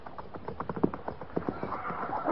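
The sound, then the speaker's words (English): Several cavalry horses' hooves clip-clop in an irregular, overlapping rhythm as soldiers lead them out at a walk, with no one speaking. “Lead out.”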